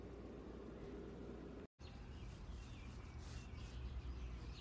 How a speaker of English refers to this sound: These birds. It is 8 p.m. Saturday, June 13th, 2020. And these birds don't seem to know that it's nighttime. This is what they do out here. They'll do this probably all night.